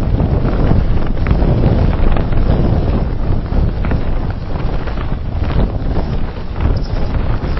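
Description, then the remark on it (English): Strong mountain wind buffets the microphone on a steep climb during a running race, a continuous, loud low-frequency roar with gusty surges and rumbling bursts, filling the whole stretch with no voices heard. “So steep, so windy.”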